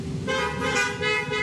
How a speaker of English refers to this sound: All right, honk if you're a Florida native.